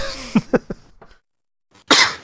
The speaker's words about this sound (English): Cough and laugh.